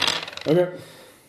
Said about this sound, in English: Give me another roll. Easy roller dice. Daka. Hoo-ha. That's 5.